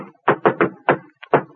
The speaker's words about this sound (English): Say, that sounds like the Harvard knock. Come in.